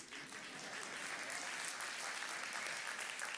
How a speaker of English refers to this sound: Don't clap for me.